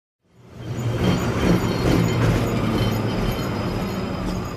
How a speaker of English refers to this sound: As Moscow woke up this morning, it didn't feel as if much had changed in Russia. The number 38 tram was trundling along as normal, transporting bleary-eyed commuters.